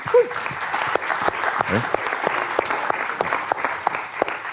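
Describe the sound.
A crowd claps steadily for several seconds to welcome a first-time visitor to a panel, a dense patter of many hands with scattered sharper claps, a brief whoop near the start, and a faint voice mixed in.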